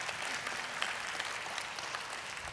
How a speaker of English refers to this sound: I just clapped as I rebuked myself. I realized that.